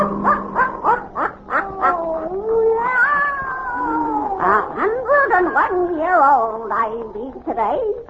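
A black cat named Satan yowls and meows in a long, drawn-out series of rising and falling wails, loud, with short chirping calls at the start and no talk alongside.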